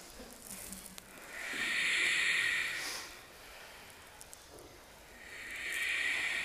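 Ujjayi breathing during a yoga class in chair pose: slow, ocean-like hissing breaths swell and fade, one long breath followed by the start of another, with a steady airy rasp and no talking.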